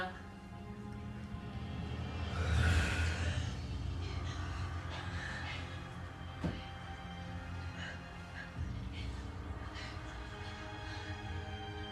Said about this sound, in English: A little sneeze.